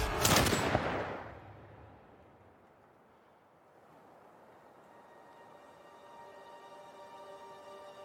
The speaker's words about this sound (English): After a long chase, the roles are reversed, and the man now chases the deer, the rifle in his hands. Now only meters behind, he puts the rifle to his shoulder and fires.